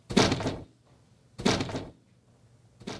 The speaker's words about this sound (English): He said, "Pooh, pooh!" and closed the door with a bang. The sound resounded through the house like a thunder.